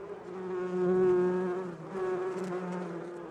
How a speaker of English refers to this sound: We're going to insert like bee buzzing sounds here because this is a segment called Hive Mind.